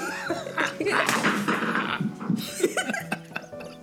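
Dogs bark and yelp in the background in short, irregular bursts, tangled with a busy mix of voices and laughter at moderate loudness.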